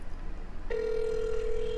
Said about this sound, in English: Hear the phone ringing? Hear that? It's going to ring again. It's still ringing. It's still ringing.